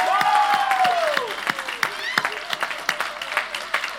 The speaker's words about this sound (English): Will we give our kids ministry volunteers a big round of applause? Yeah. Yeah. Yep. Woo!